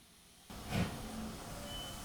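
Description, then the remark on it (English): A train lurches into motion: after a brief quiet, a broad rumbling hiss kicks in with a low jolt, then settles into steady mechanical noise with faint metallic squealing tones. “The train was moving.”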